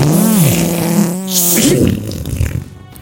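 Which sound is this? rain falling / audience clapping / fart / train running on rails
fart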